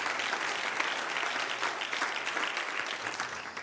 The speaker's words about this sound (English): Somebody needs to clap your hands and lift up your voice to him right now.